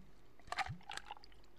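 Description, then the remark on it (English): A short, quiet pour of liquid over ice: a brief splash and glug, followed by a few light clinks of ice in a glass, with no talking. “Pour it up.”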